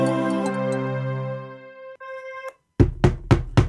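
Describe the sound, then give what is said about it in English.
A sustained musical chord fades out, followed after a brief silence by four firm knocks on a locked door in a quick, steady rhythm. “are you okay in there? The door is locked.”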